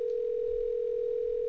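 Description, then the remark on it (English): A steady, unbroken electronic ringback tone from a phone line while an outgoing call to the speaker's brother rings, holding at an even volume throughout with no voices. “Let's give him a call here and see if he answers his phone.”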